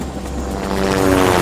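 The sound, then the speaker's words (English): A Bell Ranger helicopter flies over the green forest canopy of Zangado-Ki National Park in the Congo Basin, its engine droning in a steady rotor roar with a humming tone that grows slightly louder over the short moment, with no voices. “The helicopter streaked over the lush green canopy of the Zangado-Ki National Park, deep in the Congo Basin.”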